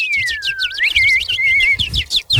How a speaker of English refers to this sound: I hear some sparrows. Those are like little chicks. I hear some sparrows fighting.